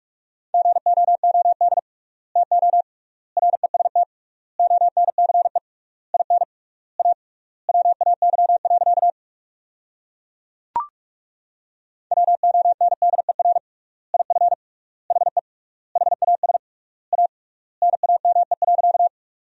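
Fast Morse code at 45 words per minute, sending sentences built from the 500 most common words with triple word spacing, keyed in a single steady mid-pitched tone, bursts of rapid dots and dashes separated by longer pauses, with a brief click and a silent gap midway. No voices.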